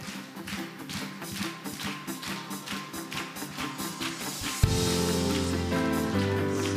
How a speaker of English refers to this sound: But before that, let's get back into worship. Come on, Bridge Youth, clap those hands.